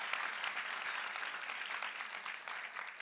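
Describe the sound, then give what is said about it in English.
An audience claps steadily, a dense wash of many hands that holds at an even, moderately loud level throughout, with no voices over it. “Come on, let's just clap right there to our soul.”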